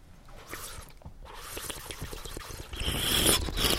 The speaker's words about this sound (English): And then I want you to purse your lips, open it just a little bit, and suck. Suck some air over the water like this. Like this.